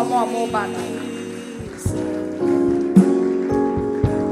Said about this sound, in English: Oh, clap for them as they come.